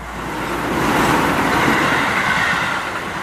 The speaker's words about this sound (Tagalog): Mabilis na humampas sa harap ko ang hangin mula sa paparating na tren.